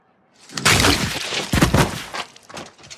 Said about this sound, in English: I'd actually love us to let's listen carefully to the sounds of those head smashings. Because I thought they were really unique and astonishing. Can we hear the mountain's head smashing against the wall of the peeing guy?